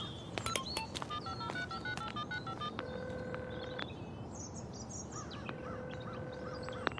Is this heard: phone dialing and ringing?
yes